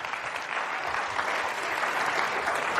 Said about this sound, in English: You can clap for that.